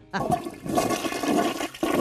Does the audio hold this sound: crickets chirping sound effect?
no